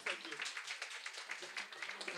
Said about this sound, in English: Team number 12 getting a round of applause. Team 12.